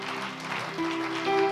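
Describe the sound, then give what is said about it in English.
An audience claps steadily, a dense, continuous patter of many hands, while sustained keyboard or organ notes hold underneath and swell slightly toward the end. “I pray that as you are clapping, your clap is saying, I am going to walk in faith.”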